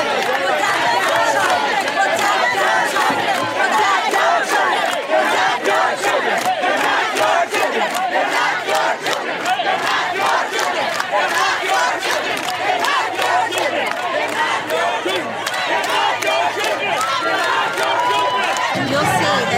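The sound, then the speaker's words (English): A large, diverse crowd of protesters, including Muslim parents, in Maryland shouts continuously, many voices overlapping in a loud, dense roar that stays steady throughout, with indistinct chatter mixed in. “You can see it's a diverse crowd of many people from around.”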